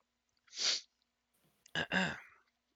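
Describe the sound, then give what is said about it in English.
Someone choking on a sip of Arizona Tea Arnold Palmer iced tea, breathed in while drinking: a sharp breathy sputter, a brief pause, then two loud, harsh, voiced coughing bursts, with no talking. “Sorry, trying to drink iced tea and I ended up breathing it in instead.”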